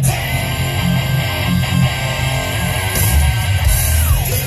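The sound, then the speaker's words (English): A loud rock track with a singer's raw, sustained scream cutting through dense distorted guitars and pounding drums, the held note sliding downward near the end. “Listen to the scream.”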